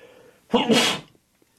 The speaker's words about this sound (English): Bless you. Sorry about that. That's all right. Every now and then I'll catch a sneeze in the middle of talking.